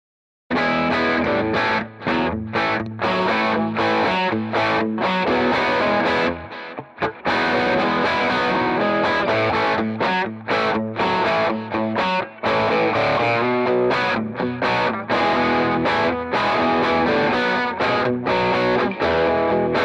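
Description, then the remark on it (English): An electric guitar through an overdrive pedal on its setting called The Goose is Loose, using LED clipping diodes, plays loud, chunky rock rhythm chords with a gritty, clipped edge and slightly scooped mids, pausing briefly midway before strumming on steadily. “So this is using the LED clipping diodes, and it's cutting the mids a little bit, keeping the highs”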